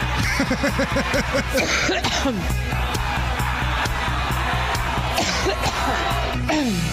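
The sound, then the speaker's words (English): Loud, harsh coughing bursts erupt over a noisy crowd, with scattered laughter and voices murmuring in the background. “Little thunder cough in honor of Pantsuit Patty's birthday.”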